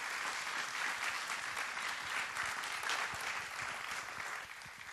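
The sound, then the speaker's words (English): An audience at a Mother's Day church service applauds steadily for several seconds, a dense wash of many hands clapping at once with no voices breaking through, fairly loud and sustained throughout. “Give them another big hand clap.”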